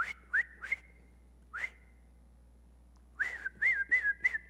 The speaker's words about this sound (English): You ever do that? Whistle for an animal to come? Whistle for a dog to come? Whistle for a pet to come?